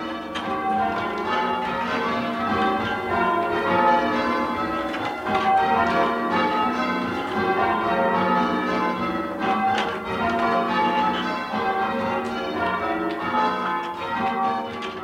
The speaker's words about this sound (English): And so if you're walking around Boston's North End on a Sunday, you will hear the very same bells that people in Boston have been hearing for hundreds of years. But you may just be hearing them played in a new way.